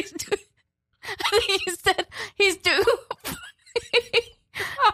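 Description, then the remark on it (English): Laughter broken by short, sharp coughs, a laugh-cough repeating in choppy bursts over several seconds, with a brief pause near the start. “Sorry, that's a laugh cough.”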